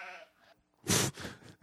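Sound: goat bleating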